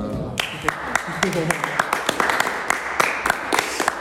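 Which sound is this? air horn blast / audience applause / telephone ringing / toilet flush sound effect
audience applause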